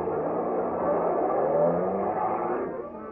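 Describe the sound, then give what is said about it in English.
A truck engine revs up and pulls away as men aboard speed off down the street, a steady rumbling roar with a rising pitch that fades slightly at the end. “They jumped into a truck that was standing outside. A few other men boarded the back of the truck. They sped off down the street.”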